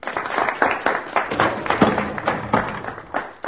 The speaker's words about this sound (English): Applause for the Russian hero. Begin.